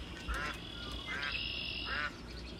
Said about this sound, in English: Do you hear the quacking? I hope you can. That is such a beautiful sound.